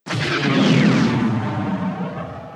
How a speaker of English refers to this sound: Ooh, the ion cannon.